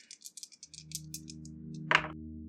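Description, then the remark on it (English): Dice rattle and clatter in a rapid series of small clicks, then land with a louder, sharper knock near the end, fairly quiet over a low steady hum, as dice are rolled in a tabletop game and come up snake eyes. “Okay, so fucking snake eyes. Plus 2 is 4.”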